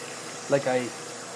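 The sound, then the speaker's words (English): Steady hiss of tap water running throughout as someone washes their hands, moderately loud, with a short voiced utterance briefly rising over it in the middle. “Wash, wash, wash, wash, wash. Good, they're clean.”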